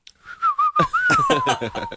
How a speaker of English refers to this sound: That was a good whistle.